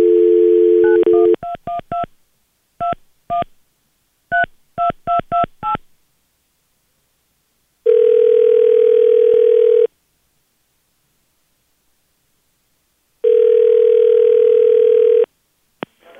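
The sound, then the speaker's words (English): A steady dial tone gives way to a quick series of about a dozen touch-tone keypad beeps, followed by two long, evenly spaced ringback tones separated by silence, as a phone call is placed to a Subway sandwich shop. No voices. “but she called a Subway sandwich shop.”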